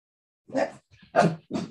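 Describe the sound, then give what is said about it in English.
A dog barks three times in quick succession, sharp, with short gaps between the barks and a faint low yip in the middle. “Right, we're going to build a bark. A very dog bark.”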